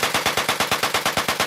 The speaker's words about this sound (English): A note to listeners, this story includes the sound of gunfire.